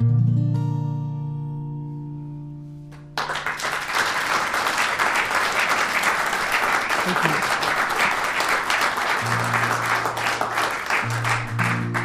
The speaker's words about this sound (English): That applause could, maybe was yours as you were listening